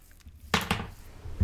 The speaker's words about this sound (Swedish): Det knackar på dörren, vilket trots att dörren var öppen alltså. Men det är ju inte så konstigt, man stormar inte bara in.